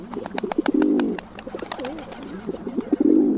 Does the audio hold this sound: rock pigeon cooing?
yes